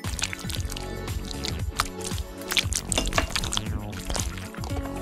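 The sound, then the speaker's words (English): Water pours steadily from a measuring cup with gurgling, splashing liquid sounds over about five seconds, fairly loud, with no one speaking. “Add some water with the included measuring cup.”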